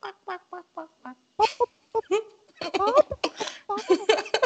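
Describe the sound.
A person imitates a chicken, giving a run of short rhythmic clucks followed by a burst of louder, squawking bawks, with no other sounds.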